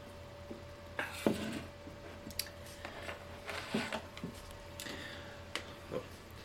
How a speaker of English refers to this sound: So, it's a squeaky chair you've got there. I know, it's a very squeaky chair.